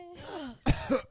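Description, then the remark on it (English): A person does a mock coughing fit imitating General Grievous from Star Wars: a drawn-out, wheezy vocal groan followed by three harsh, raspy cough bursts in quick succession. “With a cough?”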